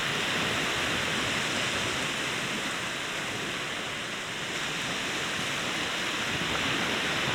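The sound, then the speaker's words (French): A steady, dense hiss of ocean foam fizzing and crackling, with countless tiny bubbles popping in the folds of the waves in a continuous wash of water noise and no voices. “Une multitude de bulles qui pétillent dans les plis.”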